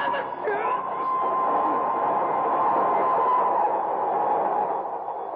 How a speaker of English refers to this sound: I can hear a train approaching